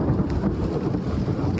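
A seasonal thunderstorm with lightning fills the short stretch with a loud, continuous deep rumble and a steady wash of rain-like noise, with no voices.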